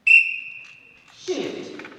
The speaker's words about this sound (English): At a student air rifle tournament at the school in the small town of Clever, just outside Springfield, Missouri, students in the gym wait for the signal from a whistle to shoot at their targets.